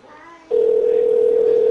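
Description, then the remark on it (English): A phone ringing tone heard over a speakerphone on a call to the Tomos Club of America: after a brief, faint murmur, a loud, steady electronic tone starts abruptly and holds without a break to the end. “Ring-da-ding-da-ding.”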